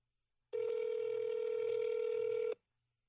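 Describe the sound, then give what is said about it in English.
A single steady telephone tone sounds for about two seconds, like a call ringing out unanswered on the line, then cuts off. It is clear, with no talking around it. “answer the phone if you called?”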